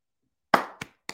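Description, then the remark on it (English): Three sharp hand claps in a steady, slow rhythm, the first one loudest with a short ringing tail and the next two softer. Nobody speaks. “Applaud. That's big of you.”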